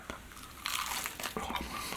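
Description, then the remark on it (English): Someone bites into a slightly cold chicken nugget and chews, with crisp, crunchy crackles in several quick bursts over about two seconds. The crunching is moderately loud and there is no talking. “We're going to get into a little chicken nugget.”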